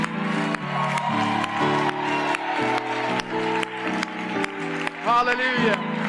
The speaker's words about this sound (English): Let's give him a standing ovation right now. Come on. Let's give him a that doesn't sound like a clap.